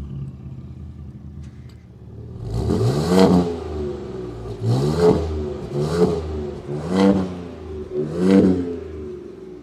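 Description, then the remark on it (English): A Ford Performance truck engine, in its quiet exhaust mode, revs up in a series of five quick, rising bursts after a quiet start, with a fairly subdued, muffled exhaust note and no talking. “Can you do like a quiet one?”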